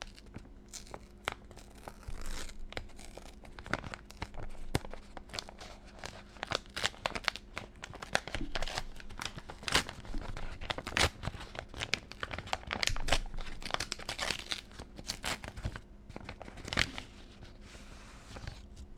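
A tightly sealed letter's paper and packaging being torn and crinkled open, a long run of sharp rips, crunches and crackles that keeps going with irregular bursts, fairly loud throughout with no voices.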